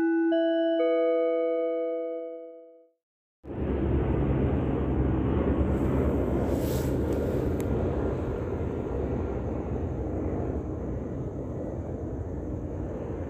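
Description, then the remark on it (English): A few ringing chime tones fade out, then after a brief gap a helicopter roars in loud at night, around 9:34 p.m., its heavy rumbling drone holding steady for about ten seconds with no talking. “Okay, that's amplified helicopter activity”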